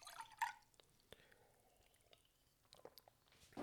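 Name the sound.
speaker drinking water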